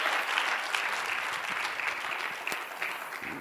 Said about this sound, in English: Now, come on, give Jesus a big hand clap. Oh, come on. I said give Jesus a big hand clap.